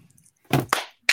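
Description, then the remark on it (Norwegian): A brief burst of applause congratulating a 74-year-old on his birthday, made of three sharp, loud claps in uneven rhythm, the first two close together and the third after a short pause, with no talking. “Kort applaus.”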